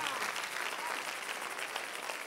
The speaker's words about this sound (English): Give the Lord a clap